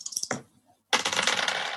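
Two dice clatter close by on a hard surface: a short rattle, a brief pause, then a longer, bright rolling clatter that tapers off. No one speaks.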